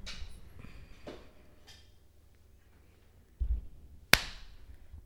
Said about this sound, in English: You can do the clap.